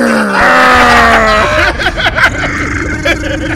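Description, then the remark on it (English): A man growls loudly and forcefully for about a second and a half, his strained voice sliding downward in pitch, then it breaks off into quieter background chatter and room noise. “Hey, growl again.”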